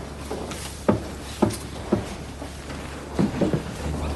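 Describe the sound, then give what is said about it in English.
A door shuts with a solid knock, followed by a series of sharp mechanical clicks and clunks as a lock is worked, fairly clear, with no one speaking. “Lock the door!”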